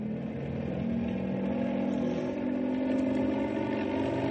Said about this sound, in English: If the copter vibrates a lot, don't think it's falling apart. I'm going to have to rev it up for better stability.